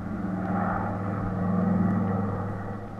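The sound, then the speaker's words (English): A chartered plane's engines drone loudly and steadily as it takes off for Miami, a thick low rumble with humming tones that swells slightly midway, as if climbing after takeoff. No one speaks. “So he chartered a plane, and we took off for Miami.”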